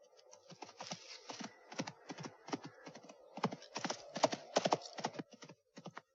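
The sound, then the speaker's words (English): Horse hooves clip-clopping in a quick, uneven run of sharp knocks, steady in loudness, with no voices over them. “In shots like this, you use a slight undercranking of the camera to make the horse appear to be going a little bit faster.”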